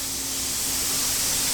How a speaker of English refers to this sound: This machine is cutting metal with water right now. Oh my God. Doing what with water? That's called the water jet machine. And what we do is we have water, regular water, coming out of a nozzle that is being forced by high pressure through the tubes